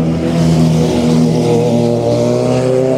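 A car engine drones loudly on a busy road with many cars and a painted bike path, its steady humming tone rising slightly in pitch over a few seconds, with no voices.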